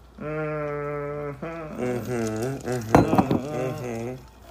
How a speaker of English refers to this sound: So, can we cheers real quick? We can cheers. You know, you got, oh my God, you got two White Claws and a Jameson and Ginger.